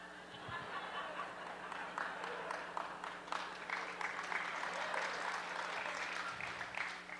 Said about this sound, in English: You're clapping for him, I see.